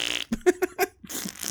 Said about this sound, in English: She's got the comedy farts.